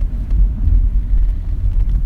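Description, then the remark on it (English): A car drives steadily through deep floodwater covering a road, with a constant low rumble and a heavy wash of sound under the wheels. It is loud, with no voices. “could you put any more water on the road, nature? No, it's... Oh, God, it's like a lake.”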